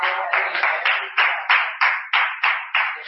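An audience claps together in a steady rhythm, about ten loud, sharp claps in quick succession, each one ringing briefly before the next. No one speaks.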